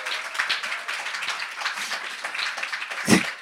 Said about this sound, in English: Guys, we need a round of applause for that accolade right there.